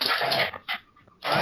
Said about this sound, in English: No, my dogs. I'm sorry. They're like really excited by that noise.